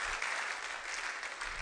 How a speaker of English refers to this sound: It's good to clap now.